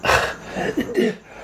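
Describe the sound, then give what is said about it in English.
A harsh burst of coughing from a man followed by a few choked, spluttering gasps, all packed into about a second and a half with no speech. “He's like coughing and spluttering.”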